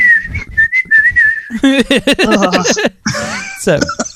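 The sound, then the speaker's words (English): A person imitates whistling with a steady, slightly wavering tone for about a second and a half. Animated, laugh-like vocal sounds follow right after. “As he's sucking off the leprechaun, the little leprechaun head in the mouth is like whistling, going.”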